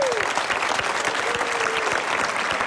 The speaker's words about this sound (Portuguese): Miguel, boa noite. Um aplauso para o Miguel Solnado, também está aqui.